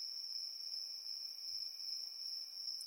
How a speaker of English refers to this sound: Are you still liking the crickets? I feel like it's still good. Crickets are like my favorite sound, so I really like them.